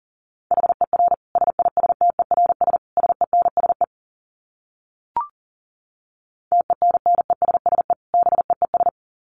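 Rapid Morse code at about 40 words per minute: a single steady mid-pitched tone keyed in quick dots and dashes, two bursts of sending separated by a pause with one brief click.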